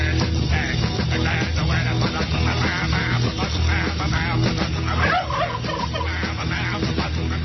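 Turkeys gobble loudly and continuously for several seconds, a dense, warbling clamor that sounds close and slightly muffled, with no pauses and no one speaking.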